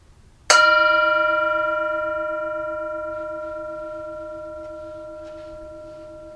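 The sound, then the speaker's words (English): A single bell is struck once before a Bible reading and left to ring, its clear, layered tones sustaining and slowly fading over several seconds with no other sounds around it. “So enjoy the bell, enjoy the reading, and then we'll roll on.”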